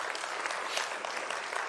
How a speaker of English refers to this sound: But I thought everybody did a great job last week. Although, yeah, you can clap for them. They were great.